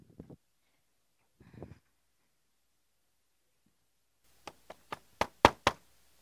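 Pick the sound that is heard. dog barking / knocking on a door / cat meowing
knocking on a door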